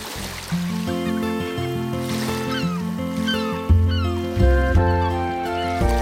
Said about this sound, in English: Well, that theme music was never more appropriate